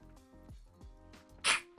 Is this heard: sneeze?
yes